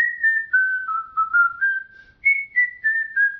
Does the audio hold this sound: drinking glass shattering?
no